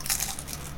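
Crunching of crisp wafer balls filled with hazelnut cocoa spread and containing cereal pieces being chewed, a dense run of dry, crackly bites filling the short moment with no talking.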